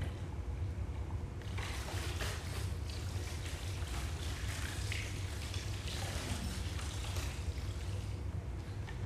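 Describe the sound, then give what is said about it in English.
Liquid is poured steadily into a container as part of an object lesson, a continuous splashing, gurgling rush that holds at an even, moderate loudness for several seconds, with no talking over it. “it's not a once and for all pouring. It's a constant pouring of Christ into my life.”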